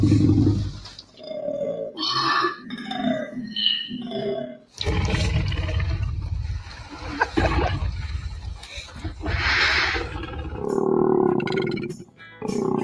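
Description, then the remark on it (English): A koala's deep, rumbling growl repeats in a long run of low, guttural snorts and belching bellows, loud and harsh, with rasping grunts rising and falling over nearly thirteen seconds. “But in reality, koala bears make this deep growl that we use for the T-Rex.”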